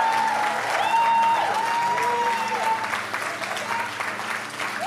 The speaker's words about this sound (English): So can we clap real fast and just thank God for this amazing house right here? And keep clapping if you love your pastors today.